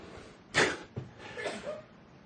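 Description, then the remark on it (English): A single sudden sneeze bursts out, sharp and breathy, followed by a short catch of breath and some faint shuffling against a quiet background. “God bless you.”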